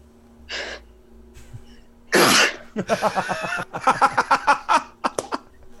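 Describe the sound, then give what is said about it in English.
A quick sharp inhale, then one loud, explosive sneeze, followed by a run of breathy, rhythmic voiced bursts like chuckling or recovering breaths. “Oh, I'm going to sneeze.”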